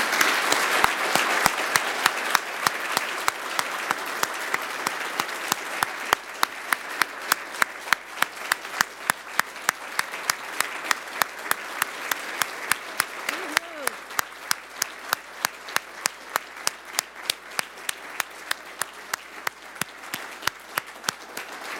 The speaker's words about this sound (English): So thanks again, everybody. Can we give them one more round of applause?